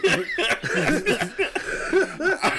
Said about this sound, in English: Shit. Damn, got the delayed cough